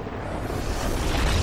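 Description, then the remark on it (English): A reversed 'Arena Explosion' sound effect: a dense, roaring rumble that swells steadily louder over a second and a half instead of decaying, with no voices. “So play the Arena Explosion in reverse.”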